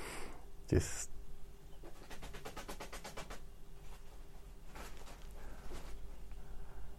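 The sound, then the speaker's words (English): Plastic bags rustle and crinkle in intermittent bursts as a man runs around with them, with one sharp loud crackle early on, then a run of quick rhythmic crinkles and softer scattered rustling afterward. “there's too much background sound, Andre running around in plastic bags”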